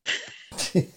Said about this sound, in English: Bless you